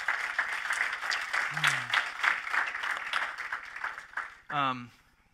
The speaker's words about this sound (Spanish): Dale un aplauso, Señor, si aprendiste algo.